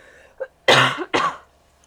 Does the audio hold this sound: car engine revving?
no